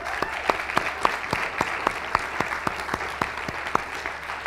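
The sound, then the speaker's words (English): A round of applause for a participant's upcoming birthday: a small group clapping in a steady, fairly even rhythm for about four seconds at moderate loudness, with no one speaking over it. “So we should have a round of applause for him.”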